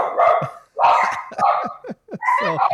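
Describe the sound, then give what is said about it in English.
A dog barks repeatedly, loud sharp barks coming in an irregular burst of about five or six, with brief gaps between them. “So we need to let people know that you you have several dogs.”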